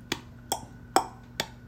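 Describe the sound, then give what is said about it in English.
A voice imitates a cork popping: four sharp, hollow mouth pops spaced about half a second apart, each short and punchy with a brief ring afterward, and no talking in between. “He can go like a cork.”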